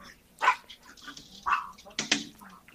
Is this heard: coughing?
no